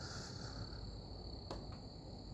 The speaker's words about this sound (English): I know these crickets and fireflies are probably annoying as fuck.